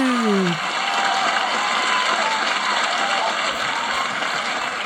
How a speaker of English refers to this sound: Applause, please.